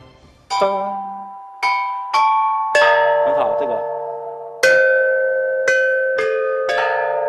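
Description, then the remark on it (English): Ancient bronze chime bells of Marquis Yi, about 2,400 years old from the early Warring States period, are struck one after another: seven or eight clear metallic strikes that each ring out with bright overtones and slowly decay, forming a simple melodic line with no voices. “To the thrill of the excavators, the chime bells could still produce beautiful and accurate musical tones, even after being soaked in a pool of water for probably thousands of years.”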